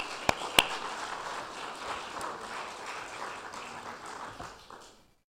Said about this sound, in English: I think we should give them all one more round of applause here.